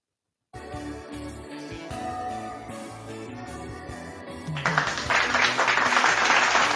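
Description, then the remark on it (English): Music plays steadily, then partway through a loud burst of cheering and clapping breaks out over it and keeps going, dense and noisy, until the end. “I like to cheer when I play his music.”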